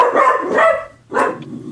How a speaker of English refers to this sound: Excuse me, as my dog decides to freak out.